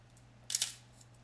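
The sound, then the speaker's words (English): A film camera's mechanical shutter fires once, a quick bright double click lasting a fraction of a second, over a steady low electrical hum and faint background noise. “And if you make the shutter a whole lot faster, it closes a lot faster.”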